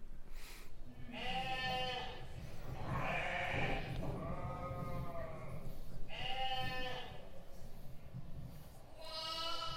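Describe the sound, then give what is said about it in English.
Several sheep bleat in turn, their wavering, harmonic cries overlapping against a steady murmur of background noise, with about five distinct calls over the span. “So this may give you a little bit more of an understanding of how we are like sheep.”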